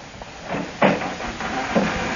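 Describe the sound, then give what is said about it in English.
A wooden lid is lifted open, with a scraping creak and two dull clunks about a second apart, over faint background hiss and no voices. “Now, I'll just pull the King Cobra's bark over here under you and open the lid.”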